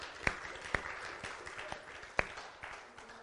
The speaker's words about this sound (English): Give him one more hand clap tonight.